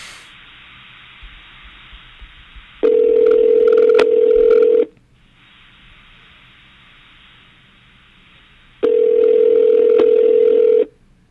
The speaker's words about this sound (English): He probably won't even answer his phone like a jerk.